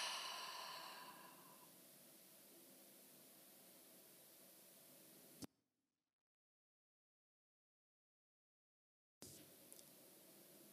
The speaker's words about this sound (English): And then we're just going to take three breaths here. So let's go ahead, breathe in through your nose. Hold that breath. And then a really slow exhale out through your mouth.